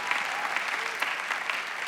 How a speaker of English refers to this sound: Somebody clap like God has a mighty plan for your life.